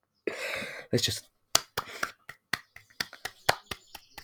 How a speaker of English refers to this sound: Let's just clap myself. No. No. We're just going to clap my hands. This is also a clap for the NHS because we should really actually be funding them instead of clapping them.